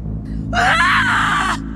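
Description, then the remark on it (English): A woman lets out a loud, strained scream lasting about a second, raw and piercing, ricocheting around a clearing, rising suddenly over a low steady background hum before cutting off. “It was a scream that had been brewing for 30-odd years, and it propelled her forward as it ricocheted around the clearing.”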